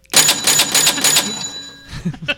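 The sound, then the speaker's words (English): A cash register bell, rung by the speaker, rings out bright over a quick rattling clatter of mechanical keys, its metallic tone lingering and fading after about a second and a half. “The cash register bell.”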